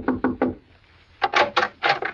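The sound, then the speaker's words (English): Three firm knocks on the wooden door of cabin number 4 at the Shady Glade, a brief pause, then five more quicker raps in uneven pairs, clear with no voices. “Well, anyway, I pulled up at the Shady Glade and knocked at the door of cabin number 4.”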